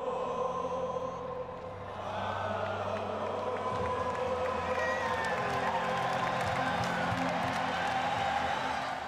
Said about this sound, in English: we are at this West Midlands venue. The rock group … is standing on stage. It is the very end of their show, and all the members of the band are simply astonished when the crowd begins to spontaneously sing this anthem,